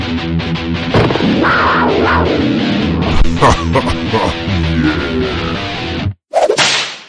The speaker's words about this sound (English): There's the sound effect. There it is. Screaming cat in heat.